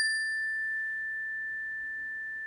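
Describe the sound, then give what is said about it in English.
A single meditation chime, one of three cleansing chimes opening a meditation, is struck once, its clear, pure tone ringing out and slowly fading as it sustains through the whole moment, with no voices present. “We're going to start with the three cleansing chimes.”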